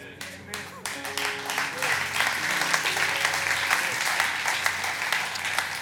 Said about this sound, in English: That was a thunderous golf clap. I really appreciate it.